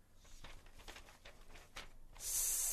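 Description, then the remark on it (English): A snake's hiss: several soft, breathy hissing bursts, then a loud, sustained hiss that fills the final half second. No one speaks. “Can you hear the hiss of the snake?”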